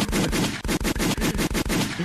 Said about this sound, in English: That's a gunshot.